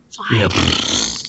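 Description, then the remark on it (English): A single drawn-out raspberry blown with the lips, a loud, buzzy, sputtering fart imitation lasting just over a second, made by a voice with no words. “No fart noises.”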